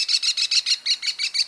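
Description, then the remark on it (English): An American Kestrel, the smallest falcon in North America, gives a rapid, shrill series of high klee notes, about ten sharp repeated calls in quick rhythm, loud with no other sounds. “The American Kestrel is the smallest falcon in North America and perhaps the best looking.”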